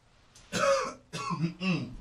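A person clears their throat in three rough, raspy bursts, each a short guttural rasp with brief pauses between them, and no talking around it.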